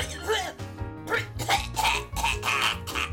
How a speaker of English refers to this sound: It was …. She just started coughing out of nowhere.